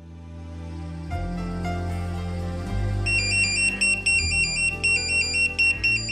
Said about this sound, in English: With apologies to any lifeboat crew listening, that's a test. But when Daniel O'Connell hears the pager